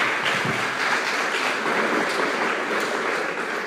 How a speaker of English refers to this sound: So will you go ahead and give him a big round of applause and welcome him.